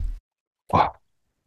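A single short, dog-like woof sounds once, fairly loud, after a brief low rumble, then silence follows.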